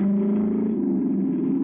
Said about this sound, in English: There's a car coming.